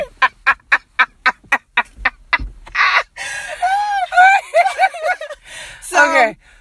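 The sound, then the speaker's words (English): A person imitates a chicken clucking: a quick, evenly spaced run of about nine short clucks, then longer, wavering squawk-like vocal calls, loud. “Bok, bok, chicken.”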